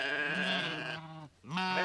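sheep bleating

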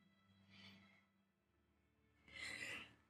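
sneeze

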